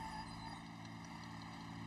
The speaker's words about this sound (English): Oh, well, I'm stealing a military truck, so I have cops on me.